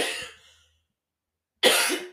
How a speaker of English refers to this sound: Sorry, I feel like coughing.